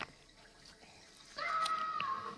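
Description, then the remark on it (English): Water pours and gushes in through a door in a steady rush, starting as a softer wash and swelling abruptly louder partway through, with a faint whistling tone riding on top. No one speaks. “Where's the water pouring in from?”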